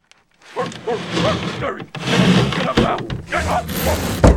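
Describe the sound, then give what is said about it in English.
Heavy furniture, a file cabinet, a desk and chairs, scrapes and drags across the floor in long grinding pushes as it is moved in front of a front door as a barricade, broken by a few dull wooden thuds, with strained voices mixed in. “grab the other end of the file cabinet. We're going to move it in front of the door, then that desk, and then those chairs.”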